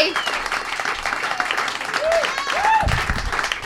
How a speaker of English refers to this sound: The very funny round of applause for John Durnell, ladies and gentlemen, visiting us from L.A.